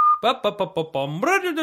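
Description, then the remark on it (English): A brief high tone, then a voice doing a bouncy, sing-song imitation of a cheerful man's unnecessary singing and whistling: a quick run of short chirpy notes ending in a rising, drawn-out phrase, fairly loud. “It was more of a kind of unnecessary singing / whistling.”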